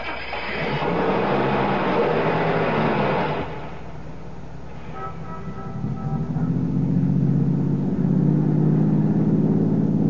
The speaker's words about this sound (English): Start your car, head west to the highway, and keep going till I tell you to stop. Listen, you want my wallet, take it. Start the car.